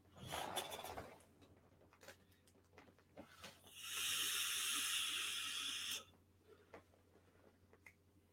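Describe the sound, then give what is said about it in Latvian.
A vape inhale through a Unity tank set to 70, with the airflow wide open: a steady, airy hiss lasting about two seconds, fairly loud, with faint clicks and rustles before and after. “Gaisa padev uz visu vaļā.”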